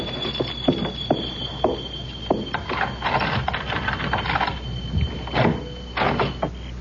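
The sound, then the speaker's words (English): Keys jingle and scrape in the lock of a locked door with a series of sharp metallic clicks and rattles, followed by a rougher grinding as the bolt turns and the door mechanism gives way. “Oh, locked. Keys.”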